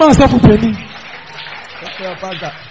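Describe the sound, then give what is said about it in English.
An audience claps for their pastor in a steady, dense patter of many hands while a man's voice talks loudly over the start and again near the end. “Clap for your pastor.”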